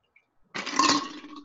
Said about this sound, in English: Again, 3/4 ounce of gin, 1.5 ounces of dry sherry. Cocktail shaker with a little bit of ice. Pour it into a martini glass.